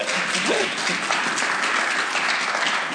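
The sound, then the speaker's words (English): A church audience claps steadily, a dense, even wash of many hands at moderate loudness throughout, with a faint voice briefly audible underneath near the start. “You want to clap, please? Can we clap for that?”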